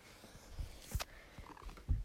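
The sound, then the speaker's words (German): A female pet cat makes a brief, soft vocal sound, a quiet chirp-like call among a few low thumps and a short rustling burst, with no one talking. “Meine Katze ist gerade gekommen.”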